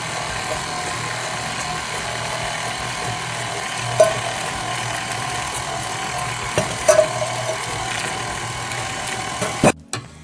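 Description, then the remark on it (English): A stand mixer's paddle whirs steadily through chocolate cake batter, blending it, a constant mechanical drone with a couple of brief clacks and scrapes partway through as the sides of the bowl are scraped down, before the motor cuts off just before the end. “This paddle actually does the scraping for you, but I just want to make sure that everything's blended in.”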